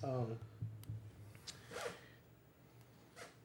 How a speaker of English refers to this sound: This part, I'm like, who put a zipper sound in there? What was that supposed to be?